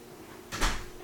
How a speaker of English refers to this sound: has gotten up and walked out the door.